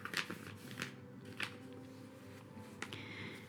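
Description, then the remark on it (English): A piece of paper found inside a box being unfolded, with a handful of sharp crinkles and crisp snaps scattered among quieter rustling, no voices present. “As you can probably hear, I'm unfolding a piece of paper that was found inside of this box.”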